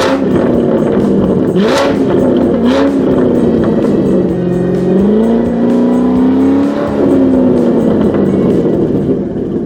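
A sports car engine revs loudly, its deep growl climbing and dropping in pitch over several bursts of throttle, with no voices.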